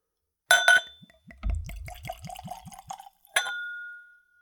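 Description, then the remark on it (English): A glass clinks at the start, then whiskey glugs out of a bottle in a quick rhythmic pour into a clean Glencairn nosing glass, served neat at room temperature. Another bright clink follows and rings out to finish. “I'm also using a clean Glencairn glass. It's a whiskey nosing glass ideal for seeing the spirit, nosing the spirit, and of course, tasting the spirit.”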